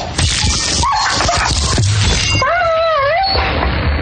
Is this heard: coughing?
no